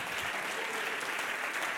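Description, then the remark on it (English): A church audience claps their hands together in thanks to God, a dense, steady wash of applause that holds evenly loud throughout, with no single claps standing out and no talking. “Clap your hands and thank God for that.”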